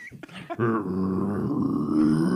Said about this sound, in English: I love burps like that, though. That you feel.